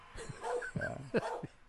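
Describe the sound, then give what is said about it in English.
A dog lets out a quick run of short yips and barks mixed with whiny, drawn-out whimpers, about five vocalizations in under two seconds, with no one talking. “that is Mahler, speaking for himself, the nativity dog”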